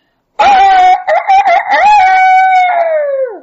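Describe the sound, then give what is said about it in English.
A rooster crows once at daybreak, loud: a choppy start that swells into a long, strained cock-a-doodle-doo and drops off at the end. No voices. “I let out my loudest crow.”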